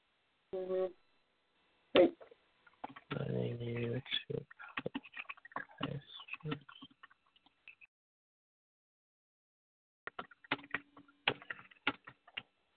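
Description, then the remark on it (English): Quick bursts of computer keyboard typing, crisp clicks tapping in irregular runs, pausing for a few seconds, then resuming. Brief voiced sounds come in near the start. “Sorry, I'm typing as quick as I can, so.”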